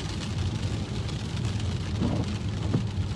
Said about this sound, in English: I will be paying even more attention to the driving part today. Not that I don't otherwise. But it's raining and visibility is kind of crap.